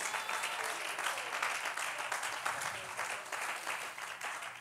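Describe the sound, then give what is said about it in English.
An audience claps together in a dense, steady wash of applause, many hands blending into one continuous, fairly loud patter that holds evenly for several seconds without any voices standing out. “Clap your hands and love him.”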